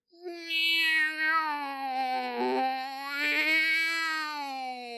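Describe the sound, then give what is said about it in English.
A single, drawn-out, wavering wail that sounds like a cross between a yowling cat and a crying baby, coming from a woodpile by a house in Arizona at 9:30 at night. It is loud and lasts several seconds without a break and with no talking. “It sounds like an adult man trying to imitate a baby and a cat at the same time.”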